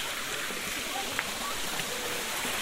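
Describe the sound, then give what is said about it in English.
A steady rush of the Cascade river's cold water tumbling over large rocks in sunshine, beside a road, a continuous bright hiss with small splashy flickers and no pauses throughout. “The water's really shining in the sunshine. Oh, it's cold, the water.”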